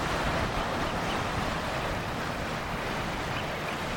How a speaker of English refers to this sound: So just on a little rocky headland, a great swathe of the Irish Sea in front of me. And you can hear the waves down below.